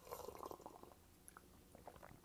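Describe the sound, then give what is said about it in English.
Someone takes a few quiet sips of coffee, with soft slurping and wet mouth noises over about two seconds. No one speaks. “Like, right now, like, even though I'm fasting, I don't care what y'all say, I'm still drinking my coffee. And listen to me sip it.”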